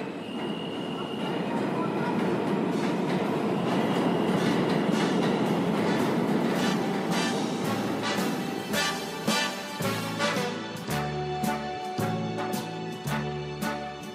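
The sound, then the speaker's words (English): A subway train rumbles loudly along the rails, a steady roar broken by sharp rhythmic clacks, with pulsing low tonal whines emerging toward the end. “Ladies and gentlemen, the next stop on this train will be...”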